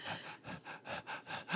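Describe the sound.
A voice imitates rapid panting to depict an increased heart and breathing rate: about six quick, breathy huffs in a steady rhythm over under two seconds, fairly loud, with no words spoken.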